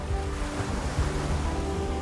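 Atlantic Ocean waves wash and crash in a steady, full roar, with a few deeper thuds of foamy crests breaking onto a sailboat's deck. A faint low hum runs underneath, and no one speaks.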